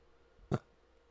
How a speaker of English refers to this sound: Every time you burp, you gotta do it in the microphone.